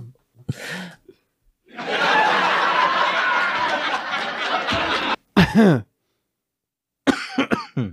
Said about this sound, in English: I feel like that was better. That was the best cough. And like it matched. Yeah, it matched that exactly.